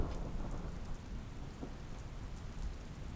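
Steady, dense rainfall pours down with a deep, continuous low rumble of thunder underneath during a thunderstorm with thunder and lightning, with no voices.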